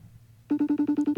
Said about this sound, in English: Oh, I would love to give him a call live on the podcast here. I'll do a FaceTime.